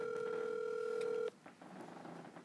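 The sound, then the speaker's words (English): A steady, piercing electronic telephone keypad dialing tone, like a held beep, sounds loudly for over a second as a phone call is placed, then cuts off abruptly, leaving faint, muffled background noise. “Let's get Rich on the phone right now and hope that he answers.”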